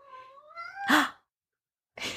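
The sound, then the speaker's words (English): A cat lets out a drawn-out, rising meow that ends in a brief breathy burst, followed by silence and then another short noisy sound near the end. Fairly clear. “Oh, Do you hear the she's like, little I agree. hi kitty?”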